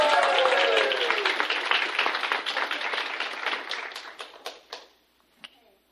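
A crowd applauds with dense, steady clapping that gradually thins out into a few scattered claps before fading to near silence.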